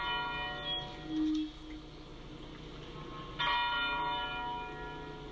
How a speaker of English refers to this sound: They're ringing the bell at the Lorraine Motel right now as a moment of silence to mark the moment he was shot.